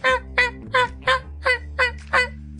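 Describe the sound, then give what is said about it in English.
A voice imitates the honking squeaks of a character being shaken: seven loud, nasal, goose-like blasts in a quick, even rhythm, each short and bright, with a low steady hum underneath and no talking. “Stop honking!”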